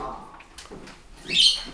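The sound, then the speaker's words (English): A pet bird lets out a single shrill, high-pitched squawk that swells loudly near the end, following softer low murmurs and faint chirps. “Can you please bring the bird in? It's annoying the heck out of me.”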